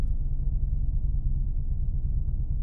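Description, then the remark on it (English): A steady, muffled low rumble of a motorcycle idling behind a car at stoplights with its radio playing, the music reduced to a bass-heavy drone. No one speaks. “Motorcycle has his radio going on behind me at the stoplights. That's why I had to pause here for a little bit”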